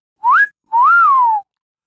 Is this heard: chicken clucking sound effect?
no